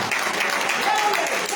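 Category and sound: crowd, audience clapping hands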